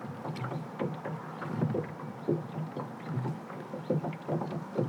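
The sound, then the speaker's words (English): Oars of a rowing boat dip and pull through water in a steady rowing rhythm, each stroke a soft splash and swirl, with a low rumble of wind or hull noise underneath. No one speaks. “However, I don't work too hard at that because I like the sound of oars dipping into water, so it's good either way.”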